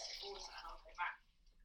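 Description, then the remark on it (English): Water runs briefly from a tap as someone gets some water, a soft, steady hissing stream with a short brighter splash near the end, heard faintly. “Let me just get some water and I'll get back.”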